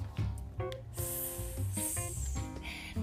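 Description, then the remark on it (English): A voice imitates a hissing snake, pushing out two or three long, breathy hisses mixed with throaty, voiced sounds, fairly loud, with no other talk. “What does a hissing snake sound like?”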